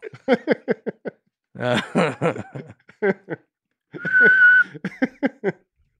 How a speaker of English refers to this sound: I can't whistle, so I'm out right away. But I'd make up for it. Yeah. And when you jumped into the other thing, I'll bring in the whistle.